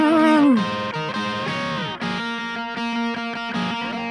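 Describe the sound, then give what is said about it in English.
A distorted electric guitar plays a short counter-melody riff that answers and echoes the song's line, opening with a bending sustained note and then moving into choppy, rhythmic repeated notes that answer the earlier line. “But what if I answer? What if I echo the line?”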